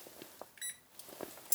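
A house alarm keypad gives a single short, clear electronic beep as the alarm is set before heading out for a walk, surrounded by soft clicks and the light jingling of keys, with no one speaking.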